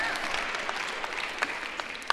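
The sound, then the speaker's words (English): A crowd applauds at a mention of Pixar movies, with a steady wash of many overlapping hand claps, moderately loud, with a few sharper individual claps popping out near the end. No one speaks. “You can always get applause if you mention Pixar movies in here.”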